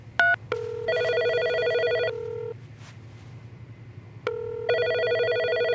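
A quick burst of dialing beeps as another telephone extension is dialed, then two long electronic phone rings with a bright, buzzy tone and a pause between them, over a low steady hum.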